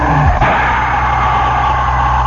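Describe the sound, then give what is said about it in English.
The engines of 33 race cars drone loudly and steadily as the cars roll past on the first, ceremonial lap before the race, with a brief falling engine pitch at the start and a constant rumble over broad roaring noise. “And these cars roll on by on that first, that ceremonial lap.”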